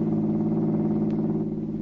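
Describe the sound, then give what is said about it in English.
The engine of a large black car hums steadily and fairly loud as it drives along a fashionable business street, a continuous low droning rumble with no voices and no breaks. “Yvonne entered a large black car and was driven away from her hotel.”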